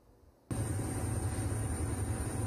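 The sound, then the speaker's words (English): A loud, steady roar inside the cabin of an Iranian helicopter in flight, recorded on a crew member's cell phone. It starts abruptly after a moment of quiet, with heavy low-end rumble and a thin high turbine whine running continuously. “the Iranian helicopter crew posted video from their cell phone from inside of the helo to Twitter”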